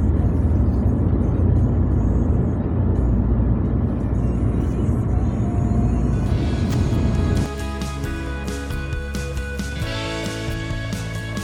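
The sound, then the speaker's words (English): A steady, heavy rumble of highway traffic heard from a service station car park near Utrecht at about 8 a.m. on a freezing, frosty morning, with an engine idling and humming at a lower, tonal pitch in the later seconds. No one speaks. “I'm in a car park somewhere near a highway, somewhere near Utrecht, I think.”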